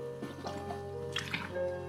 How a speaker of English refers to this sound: Let's get some water into me.